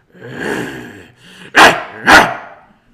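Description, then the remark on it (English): A dog growls low for about a second, then lets out two loud, sharp barks in quick succession, with no talking over them. “That's how you true dog barks.”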